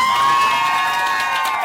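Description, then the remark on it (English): A comedy club audience cheers and whoops loudly with clapping mixed in, a steady, unbroken roar of voices that holds for the whole moment without anyone speaking over it. “Clap, motherfuckers.”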